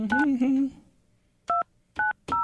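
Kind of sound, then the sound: signal or alarm, touch-tone phone dialing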